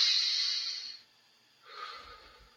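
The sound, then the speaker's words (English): Two audible breaths demonstrating a breathing pattern: a strong, airy inhale lasting about a second, a brief pause, then a softer, slightly rough exhale. No talking. “You know, when I say breath, I mean just our breathing patterns.”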